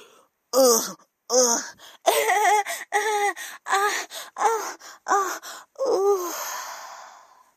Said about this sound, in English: … is kikiing in her bed and rolls around while … is out of breath, panting